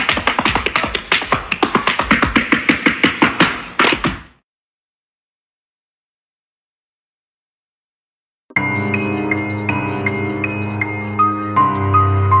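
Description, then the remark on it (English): A fast, busy flurry of tap-dancing shoes clattering for about four seconds, then sudden silence, followed by steady music with sustained tones. “How many taps had he done already, and how many more taps were there to go?”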